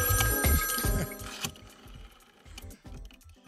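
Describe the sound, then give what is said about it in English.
A telephone bell rings with a loud, rapid metallic trill for about a second and a half, then trails off into softer, irregular rattling pulses. No one speaks. “There's still a phone.”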